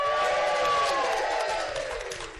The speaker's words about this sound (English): Welcome to episode 4 of the Standard Issue podcast, which we are recording live at the Harwich Arts Festival. Give us a cheer, Harwich.